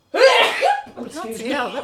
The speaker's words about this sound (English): Hang on 1 second. Go to sneeze.